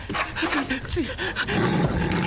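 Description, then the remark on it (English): A gigantic tiger in a bathroom gives a deep, rumbling roar that rises into snarling growls, loud, carrying on steadily for a couple of seconds. “there is a tiger in the bathroom.”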